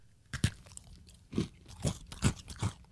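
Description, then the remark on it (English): Loud crunching as someone bites and chews an old Oreo cookie from an unsealed pack kept since before COVID: five distinct crisp crunches in an uneven rhythm, with quieter mouth sounds between them and no talking. “It's still crunchy.”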